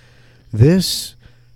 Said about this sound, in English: Oh my God, he's got it! He's got it! Did you just did you guys hear that cough? Go, dude! He's totally got the Zika.